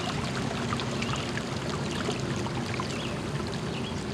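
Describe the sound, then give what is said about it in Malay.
A small stream of clear water at the edge of green rice fields flows steadily, a continuous burbling wash of water with light trickling splashes scattered throughout, even in level, with no voices. “Tepat di tepi sawah, terlihat kali kecil yang mengalirkan air jernih.”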